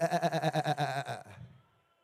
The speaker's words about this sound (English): That's not a goat. It's a sheep.